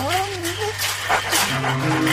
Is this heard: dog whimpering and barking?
yes